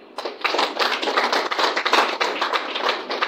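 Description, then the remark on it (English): An audience at a morning gathering applauds a gubernatorial candidate being introduced, a dense, steady patter of many hands clapping at once, loud and sustained for several seconds with no voices over it. “Please let us applaud her now.”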